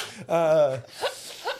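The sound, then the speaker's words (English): A voice imitates a whip: a drawn-out vocal whoosh followed by two quick, sharp crack-like bursts, fairly loud. “Jesus Christ, this guy has his own whip.”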